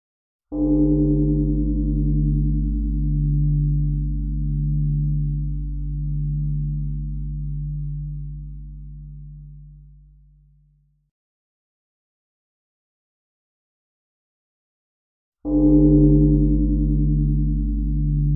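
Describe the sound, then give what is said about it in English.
A deep, resonant meditation bell is struck and rings for about ten seconds with a slow, wavering hum as it fades to silence, then it is struck again, loud and full. “Before we begin, let's take a moment and listen to the bell 3 times. Just relax and enjoy the resonance of the bells.”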